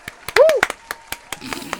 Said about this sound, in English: You've been a great audience. People clapping, people cheering. It's very good.